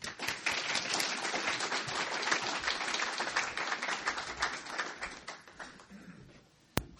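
An audience claps steadily for about seven seconds to welcome a guest speaker at a talk, a dense crackle of many hands that stays fairly even before fading, ending with one sharp knock.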